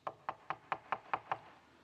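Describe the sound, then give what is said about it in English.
Seven quick, evenly spaced knocks on a door, sharp, tapping in a steady rhythm for under two seconds before stopping, with no voices. “One day, he hears this.”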